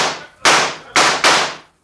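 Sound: gunshots fired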